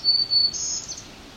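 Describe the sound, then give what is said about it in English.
Thin, high-pitched chip calls from a small songbird, fairly faint and run closely together over a soft outdoor hush, with no one talking. “He's still chipping a bit. Ticking, chipping, kind of same thing.”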